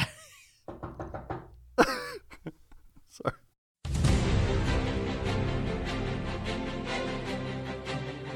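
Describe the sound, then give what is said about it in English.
A run of sharp, irregular taps on a car door window, fairly loud, with short pauses between them, then a brief silence before music starts and carries on. “Tapping on the car door window.”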